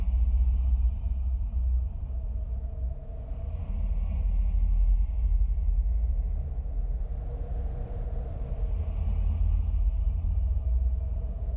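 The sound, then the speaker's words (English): A deep, rumbling whoosh of air in a film's opening helicopter shot sweeping over the Hill House estate, swelling and receding in slow waves, rising and falling like breathing, steady and fairly loud throughout with no voices. “It's like whooshing in and out, like the house is breathing.”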